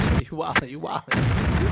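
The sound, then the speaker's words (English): Gunshot sound effects: booming bursts open and close the moment, with a couple of sharp cracks and a warbling, voice-like tone in between, loud. “You got on gunshots?”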